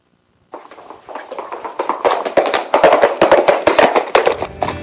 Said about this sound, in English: That clippity-clop at the beginning is a little weird, isn't it?